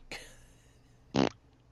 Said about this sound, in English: Blink fart. And I knew the blink fart note was going to come.